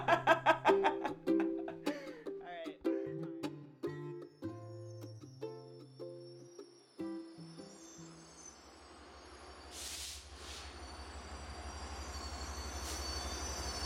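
A short stepped melody gives way to a train rolling into a station, a steady low rumble building as metal wheels let out high, piercing squeals while it slows.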